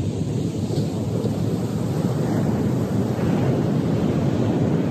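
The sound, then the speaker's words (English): Steady, rushing surf from ocean waves breaking on a shore, a continuous low roar with gusty wind noise on the microphone and no distinct individual crashes, fairly loud throughout. “We can come back to the sound of these waves too.”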